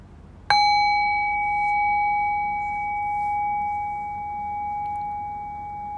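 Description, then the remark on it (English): A single bell is struck once, giving a clear, bright tone that rings on and slowly fades over several seconds amid otherwise quiet surroundings. “and ring the bell.”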